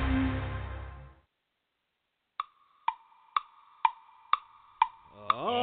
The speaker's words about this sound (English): Draft day comes, but once a year, each tick of the clock, the time draws near when there'll be hope for every team in the National Football League.